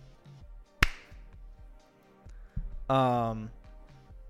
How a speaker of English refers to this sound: We'll clap us in, and then we'll finish it up.